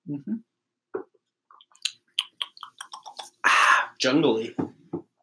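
sipping a drink

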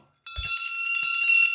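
big bell ringing

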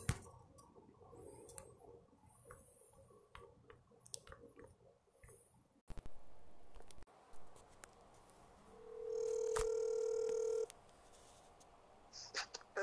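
telephone dialing tones

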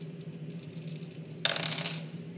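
dice rolling

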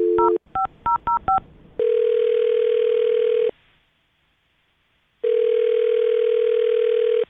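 telephone dialing and ringing

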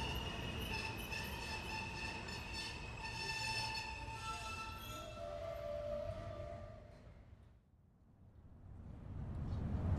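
train travelling on rails

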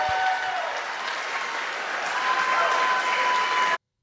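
crowd applauding and cheering

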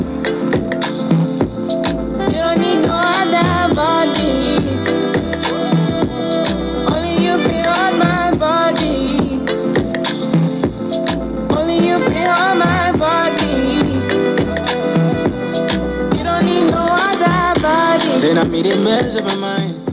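song playing

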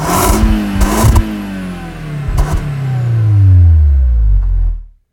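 car exhaust revving

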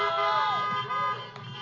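car horns honking

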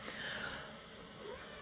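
cat meowing

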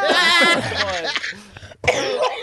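coughing

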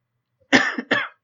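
coughing fit

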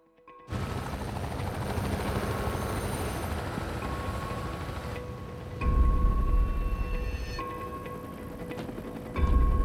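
helicopter rotors

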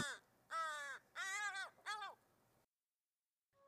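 american crow cawing

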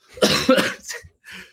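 cough

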